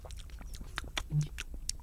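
Someone takes a sip of a peach-flavored Essential Energy drink: a run of short, quiet slurping and swallowing clicks, with a brief low hum from the drinker partway through.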